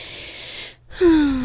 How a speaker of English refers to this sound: So breathe in and out. If you can't take a nap, just breathe.